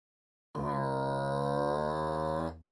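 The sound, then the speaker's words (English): A single sustained, low guttural growl made by a throat singer's voice, rough and buzzing with rich harmonics, holding steady and loud for about two seconds before cutting off abruptly; used as a signature sound in sound design. “He didn't just do throat singing, he did all sorts of cool vocal noises. And this one particularly I like. This growl.”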